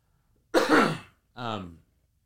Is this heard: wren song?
no